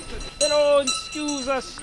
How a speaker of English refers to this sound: Thank goodness there's a loud bell to lead the way.